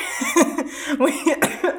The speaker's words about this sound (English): I'm coughing.